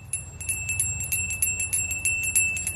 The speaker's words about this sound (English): And the bell starts getting a little closer.